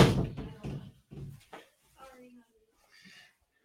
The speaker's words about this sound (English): Oh, hold on one second. All good, man. Okay. I'm going to close this door.